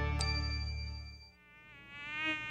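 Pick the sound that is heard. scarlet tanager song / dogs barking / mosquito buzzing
mosquito buzzing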